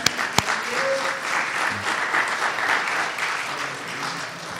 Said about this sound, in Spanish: Dale a nuestro Dios un aplauso, por favor.